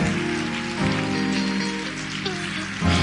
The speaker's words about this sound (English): Y'all go get the biggest cheer. Come on, St. Paul. Let's give God praise. We can do a whole lot better than that. Let's give God praise.